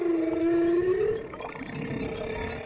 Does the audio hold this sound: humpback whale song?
yes